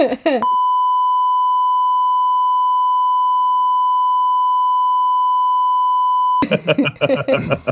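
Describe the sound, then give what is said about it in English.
A long, steady censor beep holds a single pure tone for about six seconds, cutting in abruptly between bursts of conversation before and after. “Yeah, there's gonna be a very long beep here, but.”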